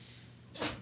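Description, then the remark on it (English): A single sharp sneeze bursts out, a sudden loud breathy blast that fades quickly over a faint background hum. “Bless you.”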